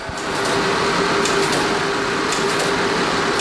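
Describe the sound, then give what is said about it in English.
A Bombe codebreaking machine runs, rotating its drums as 12 virtual Enigmas to find a position where all line up, with a steady, loud mechanical whir and a constant hum, broken by rapid clicking and clattering bursts. No one speaks. “What the machine's doing, it's rotating all 12, because you need 12 pairs, it's rotating all 12 virtual enigmas, and it's looking for a position where all of them line up.”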